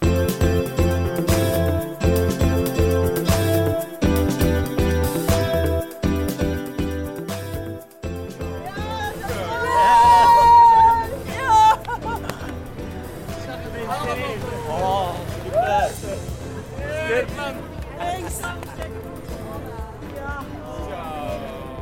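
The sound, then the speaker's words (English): Outside the Jumbo Visma team bus at the 2022 Tour de France Femmes, stage 6, after Marianne Vos won her second stage: loud rhythmic music plays, then a crowd of voices, including team staff, breaks into cheering and chanting, with wavering shouts and sung calls over a steady background din. “Well, that was the sound outside the Jumbo Visma bus when the great Marianne Vos won her second stage here at the Tour de France Femmes.”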